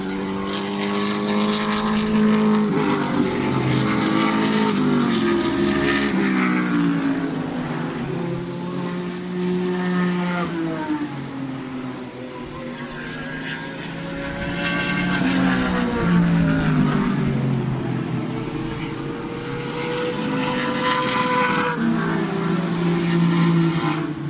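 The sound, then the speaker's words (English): Loud, throaty engines of big, fast vintage racing cars from group five roar continuously on a windy day, several passing in overlapping waves with rising and falling pitch as they accelerate and go by, with no talking. “This is group five, which is vintage, the big fast ones. We'll just check. Yeah. You can hear that.”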